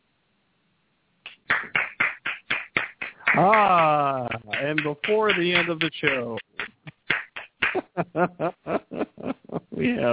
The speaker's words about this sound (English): we have clapping. There you go.